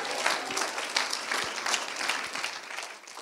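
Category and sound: crowd, audience clapping hands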